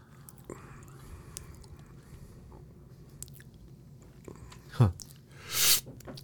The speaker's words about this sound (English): Let me take one more sip here. All right. We've got a cup of coffee's worth split between two cups.